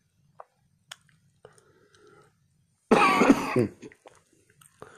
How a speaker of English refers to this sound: Forgive me, brothers, I got a little cold right now. I'm coughing and stuff.